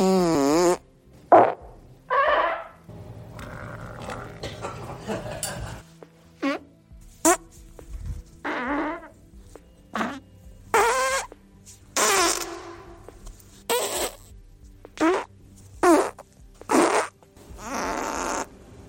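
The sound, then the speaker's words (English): A long sequence of recorded farts, about a dozen separate bursts of varied length and pitch, some buzzy and drawn out, others short and sharp, with brief pauses between them, fairly loud. “Now let's get into, well, yours truly, and check out the farts that I've made this week.”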